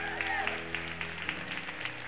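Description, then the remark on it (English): An audience applauds the production team behind the scenes with a dense, steady patter of many hands clapping at moderate volume, while low sustained tones hum underneath throughout. “How about a huge hand for all of our production team behind the scenes?”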